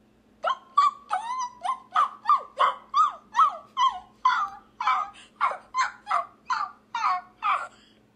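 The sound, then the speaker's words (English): A woman's voice imitates a whimpering dog with a steady run of about fifteen high, whiny yelps, roughly two per second, fairly loud, with no talking. “Sounded like a dog, like, dying. Which is, like, whimpering in its cage.”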